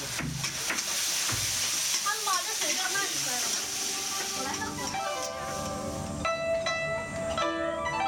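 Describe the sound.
Food sizzles in a pan as homemade Chinese dishes are cooked for dinner, a steady crackling hiss, while indistinct voices and some tonal sounds rise over the frying.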